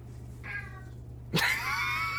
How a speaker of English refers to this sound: I think that was an agreeing meow.